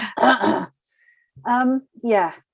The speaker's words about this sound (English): COVID cough.